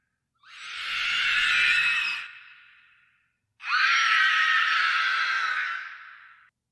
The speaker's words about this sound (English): To me, it sounds like a bunch of little kids screaming. Okay. Wow. That's some scary ass little kids. Screaming is a big part of it, I'd say.